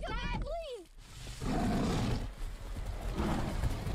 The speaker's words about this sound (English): That sounds like a lion. Oh, that's the lion. Big motherfucking lion.